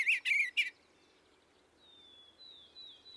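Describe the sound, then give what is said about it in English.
A bluebird's soft warbling song as it lifts its wings: three quick, bright chirping bursts, followed by fainter, thin whistled notes trailing off over a quiet background. “He warbles and lifts his wings beseechingly, but shows no anger or disposition to scold and complain like most birds.”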